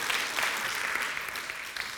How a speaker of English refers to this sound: Can we do better than a golf clap? Come on, let's do a soccer clap. Come on.